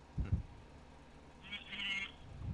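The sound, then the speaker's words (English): A mobile phone vibrates against a surface in one short buzzing stretch, faint and low, between a few soft thuds, with no talking. “You're getting some buzzes. Your phone's vibrating.”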